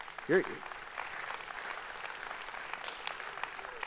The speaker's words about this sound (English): I just got to, yeah, you guys can clap.